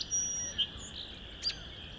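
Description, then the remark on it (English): A song sparrow sings quietly right in front of the listener, a few short, high notes spaced across two seconds over a faint, steady background hum, late in the day about half an hour before sunset under an overcast sky, with several song sparrows in the area. “This song sparrow's right in front of me, but singing quietish.”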